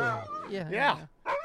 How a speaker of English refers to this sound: Yeah, wow. How can he do that? I don't know. He squeezes that thing and barks, tosses it up in the air. That's right, Mahler. Yeah, he's dancing. Good boy, Mahler.